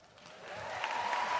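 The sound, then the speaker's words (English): Audience applause swells over a second and a half, a dense wash of clapping hands that grows steadily louder, with faint crowd noise mixed in. “I love that this crowd is so into freeing Britney.”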